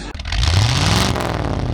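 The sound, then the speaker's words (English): A three-cylinder car engine idles at low revs, a steady low throb with a slightly uneven, burbling character, fairly loud, rising a touch in pitch before settling, with no voices. “Keeping the engine low, it's sort of just a quiet little three, although I will say I'm so used to hearing this three-cylinder noise on, like, a Triumph speed triple that it sounds sort of strange to be having the same noise coming from a car.”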